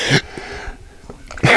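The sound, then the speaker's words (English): A sharp, loud sneeze bursts out, followed by a quiet pause and then a second forceful burst of breath at the end. “Bless you.”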